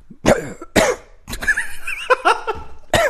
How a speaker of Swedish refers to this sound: Hoppas någon försöker sova till det ljudet. Loopa det. Ja. Men du behöver inte hosta rakt in i micken då kanske.